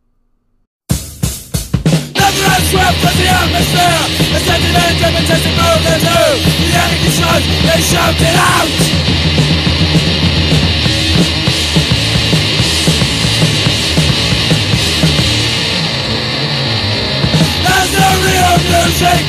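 A loud, dense d-beat hardcore punk song kicks in after a brief silence, with pounding drums, heavily distorted guitars and harsh screamed vocals roaring continuously to the end.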